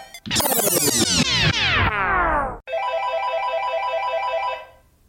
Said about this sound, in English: Oh, my phone is ringing.